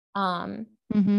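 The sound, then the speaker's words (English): A dog at home barks twice, fairly loud: a drawn-out first bark, a brief pause, then a shorter second one, with no talking alongside. “We live at home. There's dogs.”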